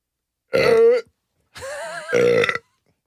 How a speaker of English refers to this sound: Oh, you should have said LaCroix while you burped just to like... Oh, weird. Really shout out. Do you need a second? I haven't done that on this show for a long time. I apologize.